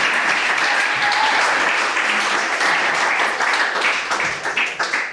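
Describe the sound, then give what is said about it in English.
A crowd applauds steadily, a dense wash of many hands clapping at a fairly loud, even level for several seconds before starting to thin and become more uneven toward the end. “Round of applause.”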